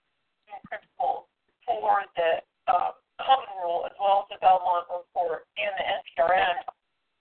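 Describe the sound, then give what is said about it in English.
A voice in narrow, phone-line quality speaks in short bursts, and its sound carries a hollow echo that trails each phrase on the call line. “So there seems to be echo here.”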